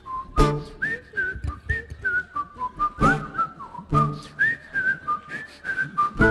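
A cheerful whistled melody carries a bouncy tune with steady rhythm, clear and close, punctuated by a few sharp percussive hits behind it; no one speaks.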